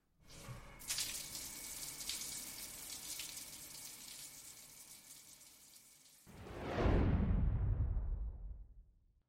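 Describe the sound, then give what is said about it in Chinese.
Water runs in a steady, close hiss like a shower spray, then shifts to a heavier, deeper splashing rush before tapering off. No voices. “你先去洗澡吧啊，老公，拜拜。”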